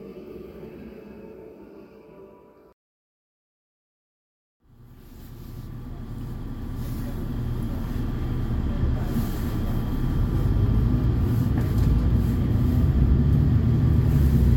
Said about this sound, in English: Well, this is exciting. We're just leaving Bruges bus station on the number 31 bus, which is going to the sea at De Haan.